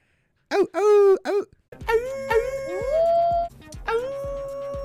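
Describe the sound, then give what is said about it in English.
A string of short, small howls, fairly loud, each sliding up and down in pitch, with a couple of brief yips early on and longer wavering howls overlapping toward the end. “Then just mini howls.”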